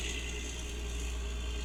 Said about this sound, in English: There's a fucking monster truck driving down my street. It's like an actual full monster truck. I'm going to leave that in because that was cool.